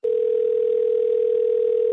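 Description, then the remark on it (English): A telephone ringing tone as an outgoing phone call is placed: one steady, mid-pitched electronic burst, holding constant loudness for about two seconds with no voices present. “We're calling him right now to set the love trap.”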